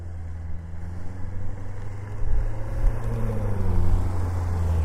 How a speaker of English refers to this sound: Now, as I said, okay, I'm at the top of this and I'm gonna let this car pass me here.